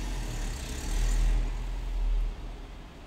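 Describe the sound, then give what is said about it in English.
A mobile phone buzzes in two low, rattling pulses over a steady hum, each burst lasting about half a second, with no voices. “Immovable, unshaken, stop vibrating, you.”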